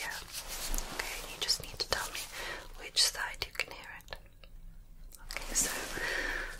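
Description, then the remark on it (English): Soft, crinkly rustling beside one ear, either the right or the left, in irregular bursts with sharp little crackles, broken by a brief quiet gap before the rustling resumes. No one speaks. “So on that note, I'm going to ask you to close your eyes, and I'm going to be rustling in either your right or your left.”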